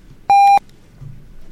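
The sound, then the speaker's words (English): A single loud electronic beep, a steady bright tone lasting about a quarter second, sounds alone against a quiet background with faint low noise afterward. “You trying to put pressure on me with beeps?”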